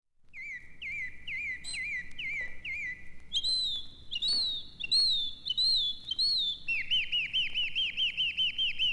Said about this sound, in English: I do love the sound of those sweet birds in my ears.